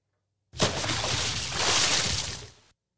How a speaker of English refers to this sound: A big splash. It was a big splash.